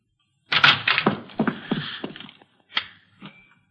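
A closed upstairs bedroom door in a house is opened: a rattling latch and a drawn-out creaky scrape, followed by two lighter clicks or thuds as it settles. No one speaks.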